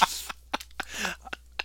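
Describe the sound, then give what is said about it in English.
A sharp, loud sneeze bursts out right at the start, a breathy blast that fades quickly, followed by several brief knocks and rustling handling noises. “I had to sneeze.”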